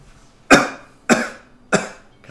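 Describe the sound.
A voice imitates a drooping flower coughing up pollen: three short, breathy cough bursts in an even rhythm, each sharp at the start and trailing off quickly, fairly loud with no talking.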